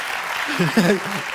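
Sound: audience clapping and cheering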